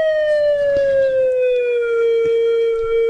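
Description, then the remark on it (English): A slide whistle holds one loud, steady tone that glides slowly and smoothly downward in pitch for about three seconds, with no voices. “A slide whistle. You know that one.”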